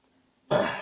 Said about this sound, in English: Yeah, I keep muting myself just in case I make noises, but I keep coughing over here.